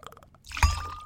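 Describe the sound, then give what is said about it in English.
A brief pour of liquid into a glass while mixing a cocktail, starting with a few soft taps and then a sudden splashy gush with a faint ringing tone as it settles, with no talking. “If you have anything you'd like to drink with us while we talk about this day drink versus night drink, go ahead and make that now, because we'll be right back.”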